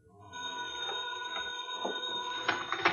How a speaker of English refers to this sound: Well, look, if you just let it go, and it'll stop ringing. Who calls a pay booth this time of night?